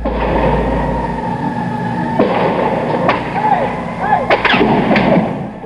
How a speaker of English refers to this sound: When Charles Whitman, ex-Marine, climbs the University of Texas clock tower and armed with an arsenal of weapons proceeds to rain down gunfire.